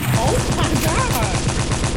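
pistol gunshots

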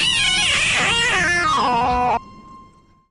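cat meowing

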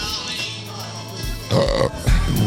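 farting sounds

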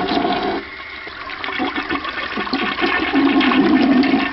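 toilet flushing

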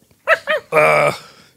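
dog barking or growling

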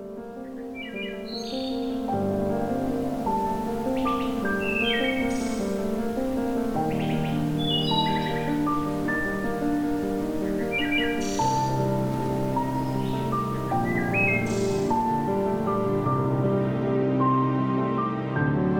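wood thrush song

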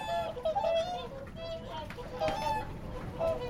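swans calling

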